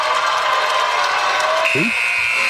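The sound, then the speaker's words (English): A game-ending buzzer at the end of the Detroit Mercy vs. IUPUI game, as broadcast on ESPN, cuts in as a steady, high-pitched electronic tone and holds to the end. It echoes over low crowd murmur in a near-empty arena with about six people in it. “The echo off the buzzer.”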